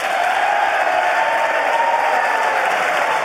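Sustained, dense applause from Democrats during President Biden's State of the Union address, a steady loud wash of clapping with no pauses and no clear voices standing out.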